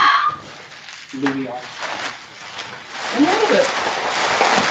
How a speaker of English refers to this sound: What is that sound? That'll really fright. It is a dog playing with bubble wrap.